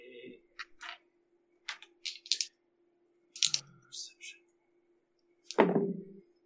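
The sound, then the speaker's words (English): Two dice rolled for a perception check in a tabletop game clatter and tumble in a dice tray, rolling under a phone, in several short, sharp bursts of clicks and knocks, quiet, with a faint steady hum underneath and a heavier thunk near the end. “Oh, they both rolled under my where my phone is covering my dice tray, so this is terrifying.”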